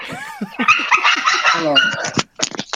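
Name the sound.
dog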